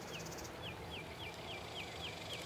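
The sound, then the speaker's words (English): Cicadas in an open grass field with cactuses at Fort Richardson State Park, Texas, on a summer morning around 10 o'clock, give short, high chirps repeating steadily about three times a second over a soft, hissing outdoor background. No one speaks. “Summertime in Texas. There's some cicadas out.”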